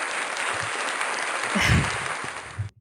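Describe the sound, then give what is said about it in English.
Steady, dense hand clapping fills the whole clip, a continuous patter of claps that swells slightly near the middle before stopping abruptly, with a faint voice briefly mixed in. “I was just supposed to be clapping, not laughing.”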